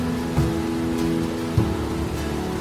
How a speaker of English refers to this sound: Let's put up that waterfall. This is the water that I see. Can you turn it up? Can we hear it?